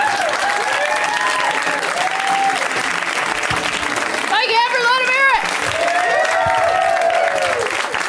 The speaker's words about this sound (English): Put your hands together, audience.